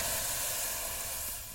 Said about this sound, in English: Then I remembered. I knelt down and used my daisy squirter to douse the flames. The cold water also snapped him out of his faint.